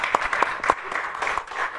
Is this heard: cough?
no